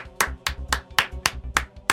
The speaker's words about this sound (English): All right, so Chris, the slow clap.